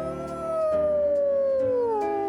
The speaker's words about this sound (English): Wolf howl.